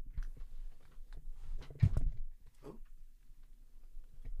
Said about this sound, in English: Damn, y'all hear that? Damn, it's Ryan. She munching hard, bitch. Damn, why she eating so loud? Hold on. Y'all hear this?